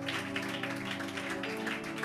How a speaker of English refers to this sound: Will you give a better clap offering to Jesus?